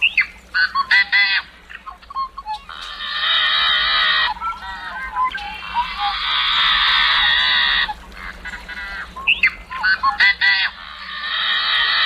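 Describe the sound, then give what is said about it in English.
Harsh, buzzing yellow-headed blackbird song: clipped clicks and notes lead into long, raspy, strained buzzes, repeated several times, loud with no talking. “And here's the more intense, slightly maniacal sound of the yellow-headed blackbird.”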